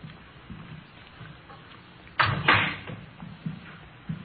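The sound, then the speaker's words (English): A door is opened with a sudden loud clunk and rattle partway through, standing out clearly against a quiet, low rumbling background with a few soft knocks. “I'll get the door.”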